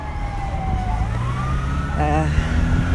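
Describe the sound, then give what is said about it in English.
Ambulance and police car sirens wail over a steady rumble of street traffic in Los Angeles, one holding a sliding tone while a faster warbling siren cuts in partway through, loud. “Ambulance and police car.”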